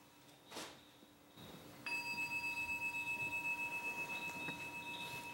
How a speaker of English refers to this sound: So you can get some idea of some of the instruments that are used. He's playing a bell.